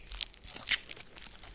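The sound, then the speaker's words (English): A Nestle Crunch candy bar wrapper is torn open, a short burst of crisp, crinkly ripping with a louder tear in the middle, heard on its own without any talking. “So in the spirit of Henry Nestle, let's eat a Nestle Crunch.”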